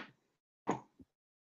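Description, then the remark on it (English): A few quick, faint clattering knocks of dice being rolled to hit in a game, tumbling onto a table: a soft opening rattle, a brighter burst after a pause, then one short final tap, with no voices. “Alright, roll to hit, please. That's the wrong dice, hang on.”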